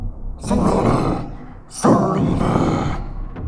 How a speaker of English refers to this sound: Then came a horrific noise that couldn't possibly be made from a human vocal cord, yet sounded like a name.